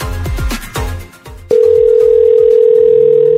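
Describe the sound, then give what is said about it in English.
A punchy rhythmic musical sting cuts off, then a loud, steady telephone tone starts and holds unbroken to the end, the ringback heard while an outgoing call to a listener in Stony Plain connects. “Answer the phone.”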